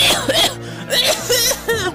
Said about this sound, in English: If you could keep the coughing on that side, please.